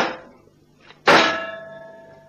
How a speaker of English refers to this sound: A metal cylinder. Sealed, too. Well, I guess we only need a little hole. That jagged fender on your car will be just the thing.